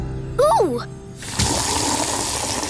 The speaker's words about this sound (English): Ooh! Why are you filling up that bucket with water, Elliot? I'm gonna splash myself so my body gets water!